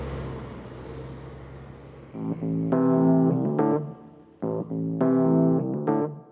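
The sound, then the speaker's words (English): A low rumble builds into a loud bus engine as the bus arrives at a stop on the way to IKEA in France. The engine roars and revs in several strong bursts, its deep droning tone rising and dropping, with no voices. “As he tries to explain that it's a stop, the bus booms into existence. The loud engine makes us both jump.”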